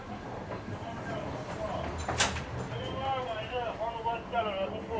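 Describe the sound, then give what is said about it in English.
Steady rumbling interior noise of a moving passenger train as someone walks through carriage number 10, with rhythmic rattling, a brief sharp clatter midway, and muffled voices of passengers talking throughout. “This train, oh, we're at number 10. Okay, two more carriages to go.”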